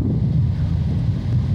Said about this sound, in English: What is? Oh, that, I just put my mic near the air conditioning.